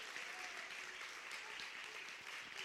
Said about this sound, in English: Clap your hands, church, if you believe it.